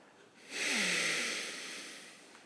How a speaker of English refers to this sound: That's me breathing through my nose in frustration.